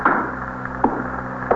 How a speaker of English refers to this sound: Would you shut the door?